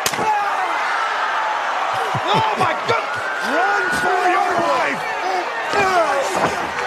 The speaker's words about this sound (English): He broke the wooden chair over his head. Didn't flinch. Sunglasses stayed on.